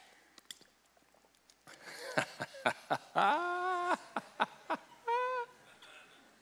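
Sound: drinking water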